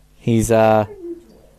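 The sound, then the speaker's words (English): A kitten, demanding attention while chewing on a person's arm, lets out one drawn-out, two-part meow, loud and tonal with a slight pitch bend, trailing off into a faint, low murmur afterward. “A kitten is drawing skin flesh from the bones.”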